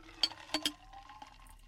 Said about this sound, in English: And there we go. And then you strain it into the glass.